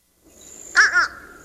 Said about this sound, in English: All right, I'm going to let you hear a bird, the fish crow, and you tell me if that's the one. Fish crow.